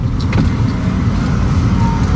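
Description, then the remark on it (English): A Toyota Corolla drives steadily through a test run at 6:06 a.m. with low beams on, a constant low engine and road rumble filling the whole stretch, with a few faint clicks and rattles on top. “went through the scene in the same car, the Corolla.”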